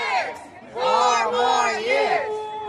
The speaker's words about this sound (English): The crowd waved flags and campaign signs as they chanted. Voters standing in line nearby weren't blocked from voting.